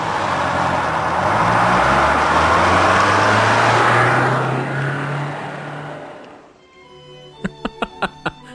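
A large school bus carrying children to school revs and rumbles as it accelerates away, its roar slowly fading, recorded with a microphone pointed at the ground in front of the bus, followed by four quick, sharp knocks.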